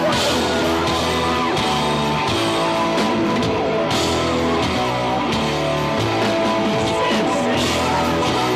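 A big arena crowd roars steadily at a band's filmed concert in Las Vegas, with scattered yells and whoops rising over the din while loud music with a thumping bass line plays underneath. No one speaks over it.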